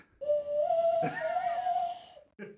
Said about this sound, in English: So this one isn't as cool as the other one, I think. So this one is just a little whistle. I saw someone do it. I learned to do it when I was a kid.